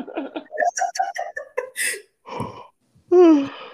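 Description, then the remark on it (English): Someone talks in quick bursts, then a loud, drawn-out yawn with a wavering, moan-like voice rises at the end. “Ooh, and the Yawning Bitch Kittens, where can we find you at? Oh, my bad. Weed makes me sleeping.”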